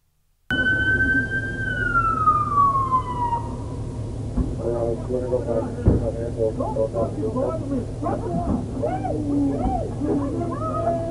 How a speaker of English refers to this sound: Chaotic. I hear sirens.